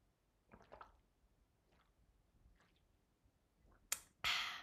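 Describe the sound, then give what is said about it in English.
Quiet sips of water and wet swallowing sounds, a few soft gulps spaced about a second apart, ending in two louder, breathy bursts like a satisfied exhale after drinking. “Let me take a sip of my water here.”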